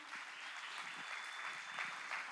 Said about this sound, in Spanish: Ok, vamos a dar un aplauso.